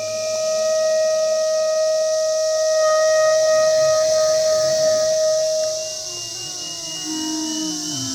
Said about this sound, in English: Okay, so this is a live performance live in the field of me and my son and millions of cicadas playing live. I'm playing clarinet. He's playing an iPad, and the millions of cicadas are singing